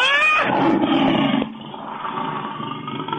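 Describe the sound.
A loud, raspy roar opens with a harsh rising snarl, then drops into a lower, sustained rumbling growl that rattles on to the end, like a rabid dog snarling and roaring, likened to Cujo, the rabid dog of the book and film.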